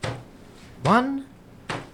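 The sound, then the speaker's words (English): An old, unused but unlocked door, its surrounding ivy torn, creaks open with a short, rising-and-falling groan from its hinges, framed by dull knocks or thumps of wood just before and after. “I say, it takes you to this old unused door.”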